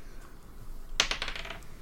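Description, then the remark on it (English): Dice clatter across a hard surface in a quick burst of sharp clicks that bounce and settle within about half a second, fairly quiet, with no one speaking. “You just roll the dice and said no.”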